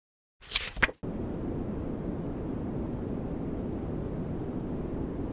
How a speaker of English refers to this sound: That's not your speakers broken, dear listeners. That is an actual podcast. 3 hours of white noise, one episode.